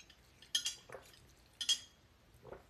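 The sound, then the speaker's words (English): A glass jar of juice made from carrots, ginger, turmeric and apples clinks a few times as it's handled, with bright, sharp taps in two clusters and a softer knock near the end, fairly quiet with no talking. “I love this glass jar though.”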